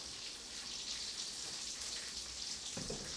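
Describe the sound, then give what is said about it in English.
Noodles are scooped into a pot of boiling water, making a steady hiss and bubbling fizz throughout, with a brief splashy burst near the end. No one speaks. “scooping it in with the sweet torture of the noodles as they fall to their deaths in boiling water.”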